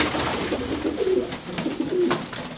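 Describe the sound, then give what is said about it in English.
Nine doves coo in low, rolling murmurs that rise and fall over a steady rushing background on a very windy day, with short bursts of flapping from their powerful wings breaking in now and then. No one speaks. “So what I'm thinking is, so we've got an onion, a tin of tomatoes, and nine doves.”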